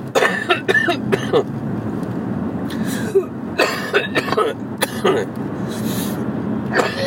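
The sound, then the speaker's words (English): A series of harsh coughs and throat clearing from a lingering cough, coming in uneven bursts over a constant low rumble of background noise, with no speech. “Excuse me, still got this lingering cough.”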